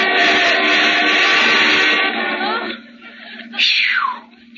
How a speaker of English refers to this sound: Here comes a car. No, wait! Stay on this side. He's going around you.